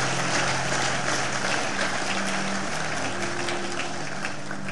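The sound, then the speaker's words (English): An audience claps steadily and densely throughout, a loud, even wash of many hands with no pauses, while a faint low murmur of voices hums beneath it. “If you wish to clap, you are delivered.”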